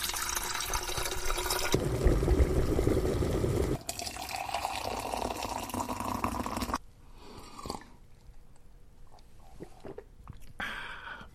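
Tap water gushes into a kettle for making tea in a loud, steady rush for several seconds, its tone shifting as it fills, then cuts off, leaving quiet clinks and a few drips.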